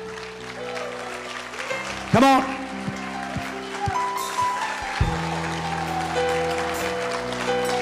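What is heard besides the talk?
audience hand clapping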